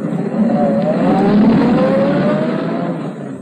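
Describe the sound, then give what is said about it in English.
A luxurious limousine's engine hums steadily, its pitch slowly rising and falling as the chauffeur-driven car drives along, with no voices over the smooth motor drone. “Seated in the luxurious limousine, equipped with a correct English chauffeur, she became Lady Edith Bannon Murdoch, gracious and casual.”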